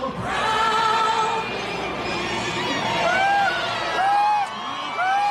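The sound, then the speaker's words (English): A large crowd of Trump supporters in Washington, D.C. cheers loudly and continuously as Trump's helicopter flies by, with high whoops and shouts rising above a dense roar of many voices, energetic throughout. “The crowd cheered as Trump's helicopter flew by en route to the Army-Navy football game in West Point.”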